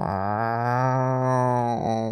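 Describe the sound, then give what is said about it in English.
A person imitates a mountain lion's growl with a loud, sustained low vocal rumble lasting about two seconds, steady throughout and ending with a brief break. No other sounds accompany it. “If the mountain lion is trying to track us, is this a growl that we were supposed to hear?”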